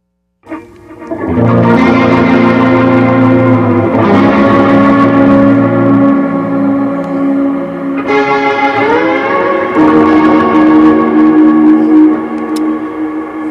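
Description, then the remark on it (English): Atmospheric guitar chords played through a Boss Nextone Artist 2 rig, ringing out through a dual delay and a big plate reverb from the CXM, swelling into a loud, lush, sustained wash that shifts to new chords every few seconds, with no talking. “That's the dual delay. Yeah. And that's the big plate reverb from the CXM.”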